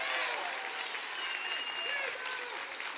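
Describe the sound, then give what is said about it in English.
An audience applauds steadily for a few seconds during a Wednesday night sermon, a dense wash of clapping at even loudness with a few raised voices and cheers mixed in. “And I didn't preach that for applause.”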